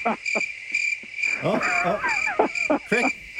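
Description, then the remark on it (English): A steady, shrill cricket chirp sound effect runs throughout in fast repeated pulses, with some brief, indistinct voice-like sounds mixed in underneath. “Okay, the cricket sort of sums it up.”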